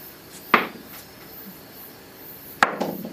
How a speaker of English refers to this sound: That's a heavy die. 10.